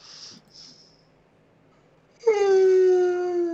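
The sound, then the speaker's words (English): A man makes a gorilla impression: a couple of soft breathy huffs, a pause, then a loud, drawn-out moaning hoot that holds a steady pitch and sags slightly lower. “That was my gorilla noise.”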